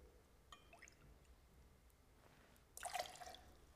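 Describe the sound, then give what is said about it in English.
A few faint drips, then a brief, brighter splash of lime juice being poured into a glass for a cocktail, lasting under a second. “We got the lime juice.”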